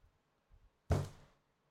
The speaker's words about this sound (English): Oh, man. My chair's coming apart.